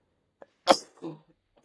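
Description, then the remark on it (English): A single sneeze: a quick sharp intake, then an explosive burst followed by a short trailing exhale and faint breath, with silence around it. “God bless you, me.”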